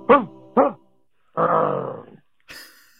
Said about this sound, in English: That's a whole voicemail. 2 barks and a growl. That was it.